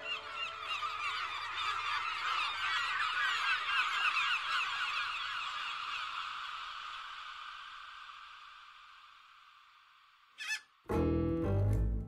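A dense flock of seagulls squawks loudly together, overlapping calls that gradually fade, then give way to a brief burst and a loud rumbling noise at the end.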